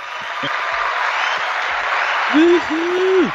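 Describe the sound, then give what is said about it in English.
Steady, dense applause for a guest on a show runs throughout, loud and unbroken, with two short tonal hoots or whoops rising over it near the end. “clap it up for him”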